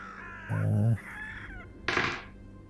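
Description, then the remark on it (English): A high, squeaky, bestial growling call with an avian quality like an eagle or owl and a growly undertone, coming from within a roofless ruin, heard as two short bursts, the second harsher and raspier, fairly loud with no talking. “And from within this kind of ruin, you can hear a sort of bestial, relatively high-pitched, sort of squeaky growling sound.”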